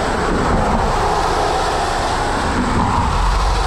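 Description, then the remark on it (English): A bus roars past on a city street, a loud, steady rush of engine rumble and road noise that fills the whole moment with no voices. “Here comes a bus.”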